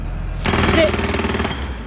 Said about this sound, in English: Jackhammers!